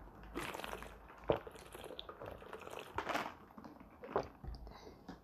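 Wet sounds of a glass of water being poured and sipped, with a few soft gulps and mouth noises spread across several seconds, no talking.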